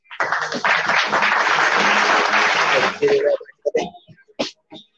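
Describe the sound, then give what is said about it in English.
A burst of dense clapping and cheering fills about three seconds at steady loudness, then cuts off abruptly, leaving a few scattered short sounds and voices. “Let's get a round of applause for the yeah.”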